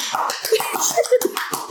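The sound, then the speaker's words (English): A short run of hand claps, several sharp slaps in a quick, slightly uneven rhythm, with faint voices murmuring underneath. “I love that clap.”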